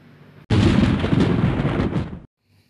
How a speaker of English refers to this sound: Rain was lashing down and thunder and lightning rolled and flashed round the palace.